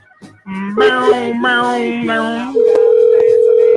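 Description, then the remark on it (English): A series of buzzy electronic telephone tones shifts pitch in short steps, then settles into a loud, steady dial tone that holds to the end. No one speaks. “let's get Peyton Sinclair on the old phones, please. Let's get that going.”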